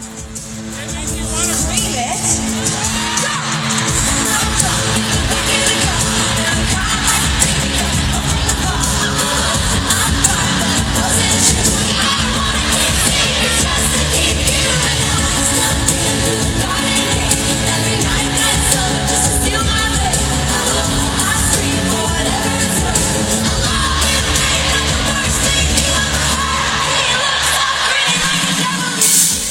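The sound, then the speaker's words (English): A huge crowd at a pop concert, heard in a TikTok video, cheers, screams and yells without letup, a dense roar that swamps the music and a faint singing voice underneath, staying loud for the whole stretch. “I heard more of the crowd than her. I mean, she moves the crowd.”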